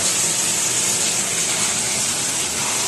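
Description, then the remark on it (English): A washing machine's water rushes and churns in a steady, loud, hissing wash that runs unbroken for the whole stretch, with no voices over it. “The NFL coach washing machine continues.”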